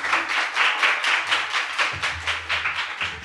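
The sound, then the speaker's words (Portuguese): An audience at a live recording applauds loudly and steadily for the whole stretch, welcoming the guest of the day onto the stage, many hands clapping together in a dense wash with a faint rhythmic pulse running through it. No one speaks over it. “Palmas para o Dario, nosso mega convidado de hoje.”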